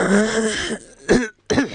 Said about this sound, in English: Sorry, just coughing something up there.